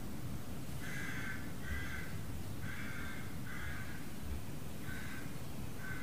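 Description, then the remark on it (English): Rooks caw in short, rasping pairs and clusters, repeating steadily over a constant low rumble of gusting wind. No one speaks. “One squawk of the rooks at a time.”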